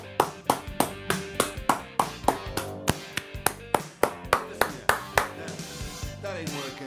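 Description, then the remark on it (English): Steady, rhythmic hand clapping, about sixteen sharp claps at a brisk even pace, heard over a sustained musical background before the claps fade into the music near the end. “And then when the shoe came out, people clapped in the theater.”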